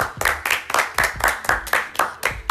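A few people clap together in a steady, brisk rhythm, about ten sharp, loud claps in quick succession with no one talking.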